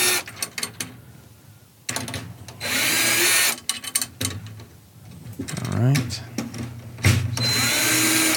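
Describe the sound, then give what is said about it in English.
A battery-powered cordless drill fitted with a drum key bit whirs in several short bursts, turning a drum's tension rods to meet the counter hoop, its motor spinning up and stopping between runs, with brief clatter and a few spoken words in between. “You don't have a battery powered drill with a drum key bit, get one.”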